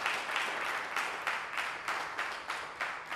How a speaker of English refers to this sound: So let us praise the Lord. He is faithful. Offer the clap offering to the Lord for healing our people.